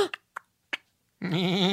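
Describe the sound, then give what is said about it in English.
Three quick, sharp clicks sound in sequence, followed by a loud, wavering goat bleat with a quavering, vibrato-like tremble that holds steady to the end. “A goat? Not just any goat.”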